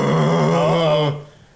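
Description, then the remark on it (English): A voice imitates a dragon's roar coming from up a mountain peak: one loud, sustained, throaty growl lasting about a second with a rough, buzzing tone, then it cuts off abruptly into near silence. “roar of unmistakably a dragon.”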